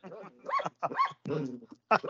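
Lilo, a jealous dog, whines and lets out several short, high-pitched yelping barks in quick bursts because Leia is climbing onto the owner's lap, moderately loud, with brief pauses between the vocalizations.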